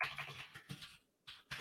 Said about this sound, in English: Really loud keyboard. Yeah, it's a mechanical keyboard. Jackhammer keyboard.